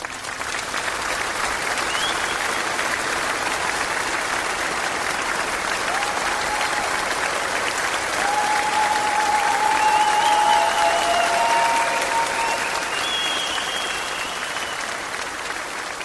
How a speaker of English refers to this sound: Let's give a round of applause for our guests.